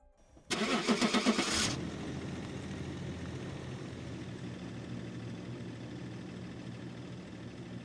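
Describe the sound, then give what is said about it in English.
A work truck engine, started at 5:18 a.m. on August 13th while parked at a house, cranks loudly with a rapid, rhythmic whir for about a second, catches, then settles into a steady low idle rumble that continues to the end. “On the morning of August 13th, Chris Watts started his work truck at 5:18 a.m.”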